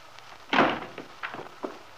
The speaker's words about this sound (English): letting himself in noisily and slamming the door after him.